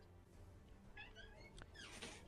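A cat named Meow Meow meows twice, a short mid-pitched call followed by a brighter, longer one, fairly quiet over a low steady background hum.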